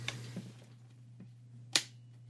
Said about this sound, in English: That click was the sound of light shining from my lamp because my dogs did, in fact, get into the cables and unplug it.